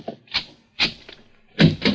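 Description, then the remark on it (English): A door is opened: a quick run of wooden clunks and latch rattles, ending in two louder, fuller knocks, with no voices. “Open the other door, Joe.”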